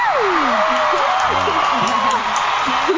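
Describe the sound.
A studio audience claps steadily for the show's guests for about three seconds, a dense, continuous wash of applause with scattered whoops and cheering voices rising above it.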